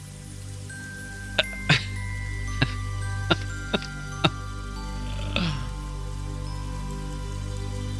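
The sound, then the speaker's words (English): A Reiki timer chime sounds as a series of about seven short, bright metallic pings at uneven intervals over a steady low hum, with no one talking. “That was your timer, by the way. It was your Reiki timer.”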